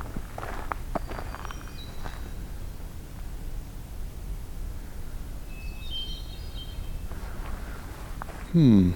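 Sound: footsteps walking outdoors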